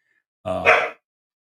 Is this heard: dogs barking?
yes